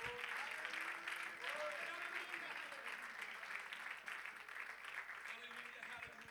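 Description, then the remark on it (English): A large crowd claps steadily and loudly while scattered voices shout and cheer, giving God a shout of praise before being seated, sustained for several seconds. “If you believe God's going to answer your prayer, would you just clap your hands and give God one more shout of praise before you're seated.”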